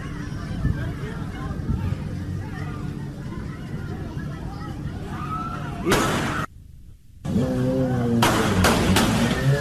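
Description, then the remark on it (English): A noisy street crowd at night in Myrtle Beach, on 4th Avenue North, murmurs and shouts, then loud sharp gunshots crack out: one burst, a brief dropout, then several more rapid shots near the end, over the continuing crowd. “Like firecrackers. Oh no, that's a gun.”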